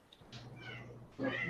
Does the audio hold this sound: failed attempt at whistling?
no